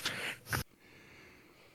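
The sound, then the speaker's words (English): A person yawns, a short breathy, rushing exhale rising to a brief peak before cutting off abruptly, followed by quiet room tone. “That made me yawn just hearing you say that out loud.”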